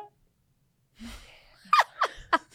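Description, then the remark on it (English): A person sneezes: a breathy, gasping build-up followed by three sharp, explosive bursts in quick succession, each fairly loud and abrupt. “I try to avoid it because it's like, hold on, I'm gonna sneeze.”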